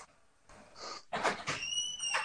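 A front door is unlatched and swung open for a stranger who walked through the yard to the door, with a sharp click, a rustling scrape and a thin, high hinge squeal trailing off near the end.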